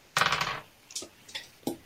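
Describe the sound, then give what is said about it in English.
A short rattling clatter of three six-sided dice rolled across a hard surface during a game, followed by three separate sharp clicks as stray dice bounce and settle, one die being dropped, with no talking. “2 dice, I still managed to drop a die somewhere.”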